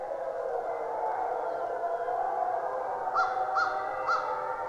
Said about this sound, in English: These are wolves in the Algonquin Provincial Park in Canada.